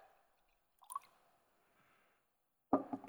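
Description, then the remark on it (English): Juice, used in place of wine, is poured out in a soft, steady trickle, with a brief drip or splash early on and a louder liquid slosh right at the end. “Jesus would have taken this wine, juice here, and poured it out.”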